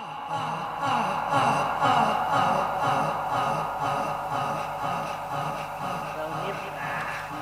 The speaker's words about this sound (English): Now, while Deagle is being murdered, the sound effects are just layered recordings of men panting.